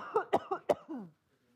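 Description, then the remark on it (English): A person with a tickle in the throat coughs several times in quick succession, short harsh bursts into the microphone, ending with a low throat-clearing rasp before the sound falls quiet. “I'm going to keep coughing in the mic if I don't have one.”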